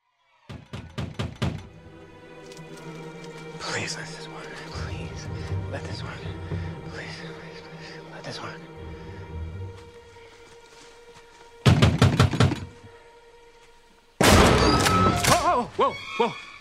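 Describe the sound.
Several quick, heavy knocks thud as a man bangs on a hatch door over and over at the start. A muffled voice and a low hum follow, then another burst of pounding and a loud, clattering crash near the end.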